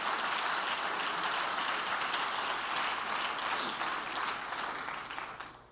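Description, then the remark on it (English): A church audience claps continuously in praise, a dense, steady wash of applause that holds for several seconds and then begins to taper off slightly at the end. “Clap your hands and praise Him in this building.”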